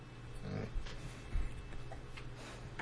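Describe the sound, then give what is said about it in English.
A sick dog with bronchitis snorts and makes short, rough vocal sounds, a few brief low bursts over a steady background hum, with no talking. “You're supposed to be resting your vocal cords because you have bronchitis. Okay? Now go lay down. Be sweet dog.”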